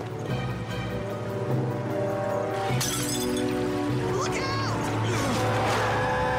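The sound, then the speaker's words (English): A large truck roars past on a street with a swerving rush as a metal canister bounces out of the back, then a sudden sharp crash of shattering glass cuts through, followed by rattling debris and continued loud traffic noise. “The truck swerved, a metal canister bounced out of the back.”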